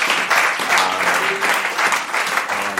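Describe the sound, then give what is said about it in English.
A crowd applauds the Lord steadily, a dense wash of clapping that holds at an even, fairly loud level for a few seconds, with faint voices and cheers mixed underneath. “Doesn't he deserve a round of applause?”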